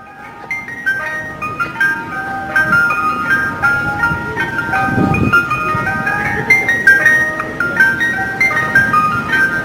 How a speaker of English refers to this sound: presents an ice cream truck. That's kind of cool. Wow.